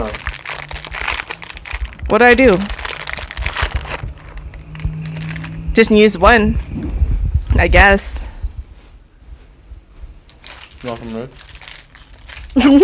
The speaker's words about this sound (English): Hella crinkling.